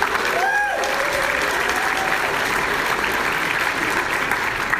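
A crowd applauds PAX steadily for about five seconds, a dense, even wash of clapping at constant loudness, with a brief whoop or cheer rising early on.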